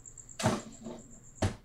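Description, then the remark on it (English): A cricket in a room chirps as a thin, high-pitched trill, pulsing at first and then holding steady and faint, while two louder dull knocks break in, one early and one near the end. “There's a cricket in my room now.”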